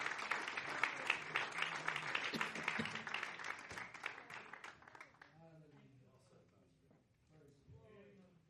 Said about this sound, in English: Put your hands together and give the Lord a good clap off.